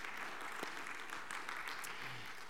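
A roomful of people clapping steadily, a dense, continuous patter of many hands that fills the space evenly without pauses, with a faint murmur of voices underneath.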